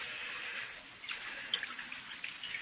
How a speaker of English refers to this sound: Here's the jug, Mr. Hawtrey, and I brought you a cup, too. Pour me some. I want to get good and drunk.